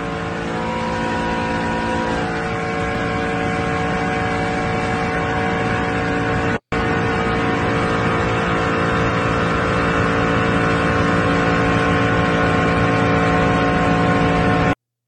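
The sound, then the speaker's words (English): A race car driven at about 200 mph at Daytona during an ARCA driver's license test, recorded on a phone brought into the car: the engine roars in a loud, steady drone with strong harmonic tones, holding constant for about fifteen seconds apart from one split-second cut midway. “And recorded a video and driving 200 miles an hour, Daytona.”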